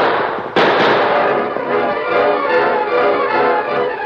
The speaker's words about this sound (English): Three shots. The signal. On top of the mountain, Tonto heard the bark of the Lone Ranger's guns.